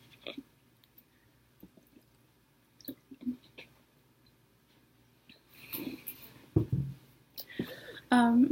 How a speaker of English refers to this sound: Let me get a sip of water.